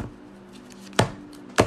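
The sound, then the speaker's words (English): A deck of playing cards being shuffled, heard as two crisp, sharp slaps about half a second apart over a faint, steady low hum. “Check out this shuffle.”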